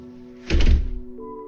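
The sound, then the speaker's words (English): A single heavy front door of a house slams shut, a sharp low thud with a brief rattle, then a faint steady hum continues afterward. “I slammed the front door, cutting off the flow of bullshit.”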